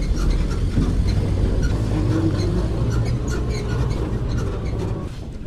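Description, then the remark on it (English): A jeep rumbles over bumpy ground in the jungle, its low engine drone steady throughout, with loose rattles and clattering jolts scattered on top. No one speaks. “It's gonna be a bumpy ride.”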